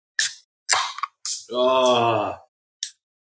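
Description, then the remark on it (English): Several beer cans crack open one after another, each a sharp fizzing pop. A drawn-out voiced sound from someone fills the gap before the final crack. “Oh, it's like an orgy of cans getting opened.”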